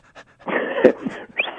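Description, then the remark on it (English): Someone imitates a panting sheepdog with quick, breathy huffs and a short whiny yip, fairly loud, over about a second and a half. “I'm your sheepdog again. Give me the commands and I'll tell you what I'm going to do.”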